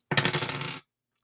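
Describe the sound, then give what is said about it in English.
Dice are rolled again: a quick burst of hard little dice clattering and rattling on a surface, fairly loud, lasting under a second before it stops dead, with no voices. “Let's roll the dice again and see what happens.”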